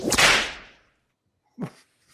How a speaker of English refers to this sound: And the extremely benevolent sheikh decided that they could be released after receiving just 20 lashes each of the whip.